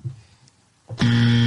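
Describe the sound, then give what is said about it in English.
A loud, harsh game show buzzer, hit during a Tiger King trivia game, suddenly blares after a brief quiet moment, holding a steady, raspy electronic drone to the end. “You hit the buzzer again.”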